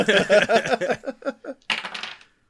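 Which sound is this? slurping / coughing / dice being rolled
dice being rolled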